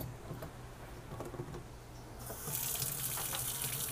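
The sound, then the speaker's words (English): Water from drinking bottles is emptied steadily into a sink, a continuous splashing that grows louder and brighter about halfway through as the flow strikes harder, with no voices present. “We're going to empty all this out, you guys.”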